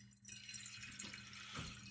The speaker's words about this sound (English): I'm pouring a glass of wine, actually. Glass of wine, Jesus. Bit of red during the week, you know.